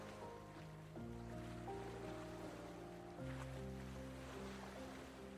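Water splashes and gurgles steadily against a sailboat cutting through the gentle swell at the center of a mountain lake, a continuous wash of sound, with soft sustained musical chords underneath.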